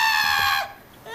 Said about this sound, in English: That's a goat. So that was a goat. That was a real live goat.